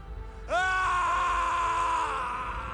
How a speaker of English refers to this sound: And then Matthew McConaughey does some good yelling.